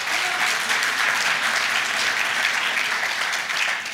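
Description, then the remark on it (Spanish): A crowd applauds steadily, a dense wash of many hands clapping at once, sustained and fairly loud throughout with no talking over it. “Clap if you're going to get ready.”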